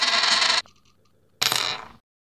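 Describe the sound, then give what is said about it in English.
A penny is flicked with a bright metallic ping, rings faintly for a moment, then lands heads up with a crisp clatter that quickly settles into silence. No one speaks. “the Penny lands on heads.”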